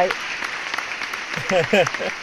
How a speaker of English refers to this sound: add in more applause in post. We deserve this applause.